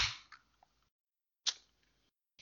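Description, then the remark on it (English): A sparkling water can snaps open with a sharp, crisp pop and a short burst of fizzing hiss, followed by a second pop a moment later and the start of a third. No one speaks. “I could tell by the sound of the pops a little harder than a beer.”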